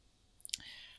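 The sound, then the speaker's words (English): A quick cluster of small, sharp, faint computer mouse clicks as someone scrolls to the bottom of a research paper and clicks its open data link, followed by a soft, steady hiss. “No, I just accidentally scrolled to the bottom of the paper and realized they have 10 supplementary tables, which I didn't realize before.”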